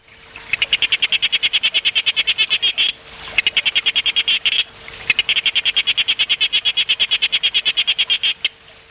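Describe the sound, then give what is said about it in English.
A sharp-snouted day frog, a species from Queensland in northeast Australia, calls in long rapid trains of sharp, evenly spaced pulses, three bursts separated by brief pauses, loud with no other sounds. “This is the sharp-snouted day frog.”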